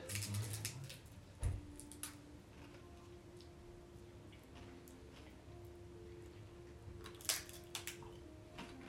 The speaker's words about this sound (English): Are we crunching too loud for the last 3 minutes? That's it's fine. It's ASMR.